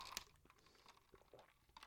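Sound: sipping coffee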